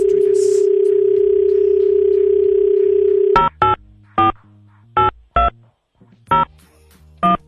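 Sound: telephone call ringing tone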